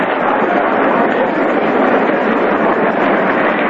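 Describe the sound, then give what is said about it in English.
A baseball stadium crowd applauds a spectator's catch of a foul ball in the stands behind the National League dugout, in a steady, dense wash of clapping and cheering that holds at an even, fairly loud level throughout, with no voices standing out. “The applause there is for the catch by the spectator.”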